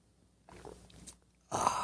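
Soft wet mouth smacks, then a brief loud slurp as someone sips hot coffee from a mug. No talking.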